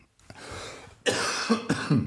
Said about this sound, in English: We've been dealing with this cough for this whole time